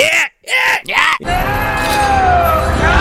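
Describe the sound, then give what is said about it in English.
Three loud, exaggerated anguished yelps burst out in quick succession, then give way to a drawn-out, strained cry over a dense, rumbling wash of noise. “Is it a scream or is it like a yelp?”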